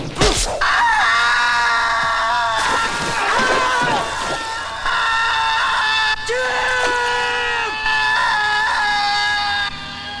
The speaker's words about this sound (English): And within seconds, Jim gets slashed across the chest and screams. His chest explodes.